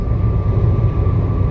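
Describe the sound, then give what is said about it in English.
A steady, loud engine drone from a yellow airplane passing overhead, a continuous low rumble with a faint high tone, no voices. “yellow plane.”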